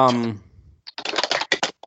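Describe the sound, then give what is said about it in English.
A rapid, uneven flurry of key taps, like someone typing fast on a typewriter, clattering for about a second after a brief voice trails off. “Who is tapping on a typewriter?”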